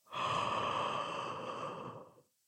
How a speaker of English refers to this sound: Oh, that was a really good yawn too.